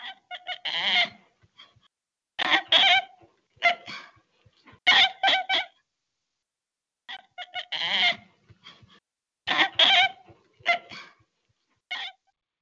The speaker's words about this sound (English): Okay, well, 10 points if you've got orangutan. If you've got some sort of monkey, or just the word monkey, give yourself 5 points, but it was an orangutan.